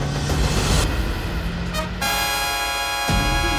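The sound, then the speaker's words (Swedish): Heavy vehicle engines roar with loud road noise during a car chase on the E14 just outside central Östersund, then a sustained, blaring truck horn cuts in and holds for over a second amid the rushing traffic. “så kan vi meddela att vi istället sänder direkt från den biljakt som pågår på E14 strax utanför centrala Östersund.”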